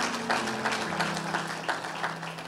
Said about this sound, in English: Come on, can we clap just a little bit better right about that? Yeah, yeah.